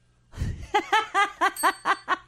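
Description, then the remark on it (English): A quick burst of bell rings, about seven bright dings in a steady, rapid rhythm, fairly loud, preceded by a soft low thump, with no talking. “How can you dread work when there's a bell involved?”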